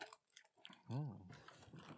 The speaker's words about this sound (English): But I am going to continue munching on these other chips because damn. They're individually packaged.